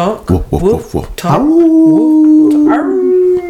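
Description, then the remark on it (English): A human voice mimics a wolf, letting out a few quick yipping barks before sliding into one long, steady howl that holds for a couple of seconds. “I don't know why wolves bark in Kiki World. I just don't know. She over there growling it.”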